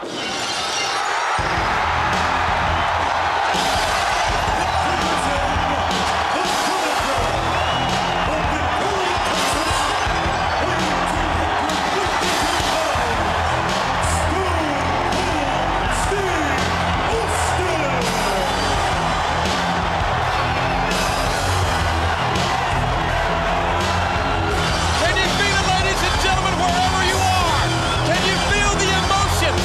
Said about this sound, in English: Glass breaking, the incredible pop.